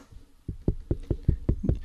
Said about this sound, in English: Hey, I'm knocking on the door here.